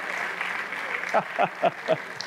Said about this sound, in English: If you believe that, clap your hands and let God know you mean business.